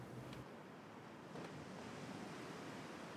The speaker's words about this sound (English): And there is always the ever-present crash of the ocean.